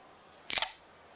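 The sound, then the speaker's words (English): A beer cracks open with a quick, crisp snap and a short bright hiss of escaping gas, over in a fraction of a second against a quiet background, with no voices. “Crack the top off one.”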